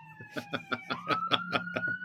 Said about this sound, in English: do you hear the sirens? Yeah. Yeah. Yeah. Is that for you? That's very New York.